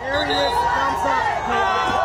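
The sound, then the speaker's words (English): A dense crowd cheering and shouting outside a courthouse, greeting Donald Trump's motorcade as it leaves; many overlapping voices and whoops form a loud, continuous roar with rising and falling calls throughout. “Trump was greeted by a crowd as his motorcade left the courthouse.”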